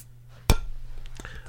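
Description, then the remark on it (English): A beer can or bottle cracks open with one sharp snap, followed by a soft, steady fizzing hiss that lingers for about a second. No one speaks. “I love that you get the snap and the sizzle every time in the mic.”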